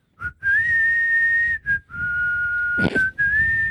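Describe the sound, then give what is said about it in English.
A person whistles the slow opening melody of a rock ballad, holding long steady notes separated by short breaths, with a brief breathy burst of noise near the end. “That is the whistle opening, right?”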